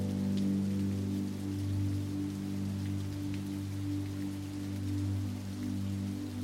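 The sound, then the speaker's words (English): Water from a waterfall pours down rock sides and splashes steadily into a bronze pool below with no break, a dense hiss flecked with small spattering drops over a low, even rumble. The level stays constant throughout, and no one speaks. “The water crawls down the rock sides and meets in a bronze pool below.”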